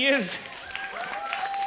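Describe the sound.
An audience applauding in a steady, dense patter of claps, with a brief whooping cheer at the start and some high whistles and voices mixed into the clapping.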